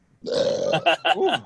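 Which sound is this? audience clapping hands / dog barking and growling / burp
burp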